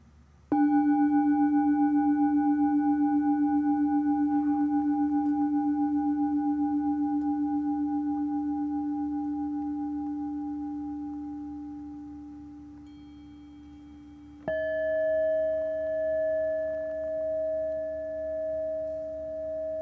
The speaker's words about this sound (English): Listen to and hear the sound of the bells.